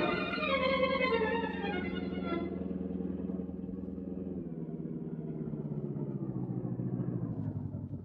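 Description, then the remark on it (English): A car engine rumbles steadily, its pitch and brightness dropping after a couple of seconds as the car pulls away to drive to Newell Street, leaving a low, continuous motor drone with no voices. “I'll take out the other car and go to Newell Street.”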